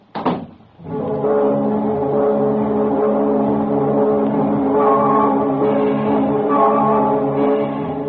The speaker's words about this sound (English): You get the car out of the garage, you drive up and park in their parking lot.